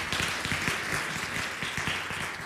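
A crowd applauds steadily, many hands clapping at once in a dense, continuous patter that stays fairly even in loudness for a couple of seconds.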